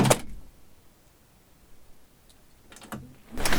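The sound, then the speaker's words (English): The heavy door of an isolation booth in a recording studio closes slowly: a brief scraping rush at the start, a near-silent stretch, then a couple of muffled bumps and rustles as it seals shut. “Just to demonstrate the power of the isolation booth, I'm going to slowly close this door.”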